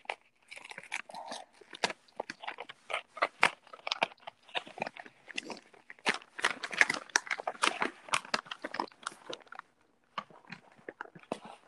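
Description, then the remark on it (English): Crinkling and rustling of taped gift wrapping paper being carefully peeled open after the ribbon is removed, with a steady stream of sharp crackles and small tearing snaps, nearly continuous before a brief pause near the end. “All right, the ribbon is off, and I'm trying to preserve the paper because I learned how to make bows out of wrapping paper since I can't recycle most of it.”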